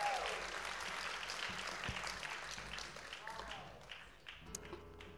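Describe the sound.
A crowd applauds steadily with dense, continuous clapping, fairly close and loud, tapering off toward the end as voices begin to come through.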